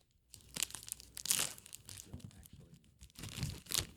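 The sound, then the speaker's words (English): Crinkly peeling of the thin paper backing pulled off a sticky fruit roll-up, coming in several uneven bursts of tearing and crackling over a few seconds. “Just keep pulling the paper and then until it starts to”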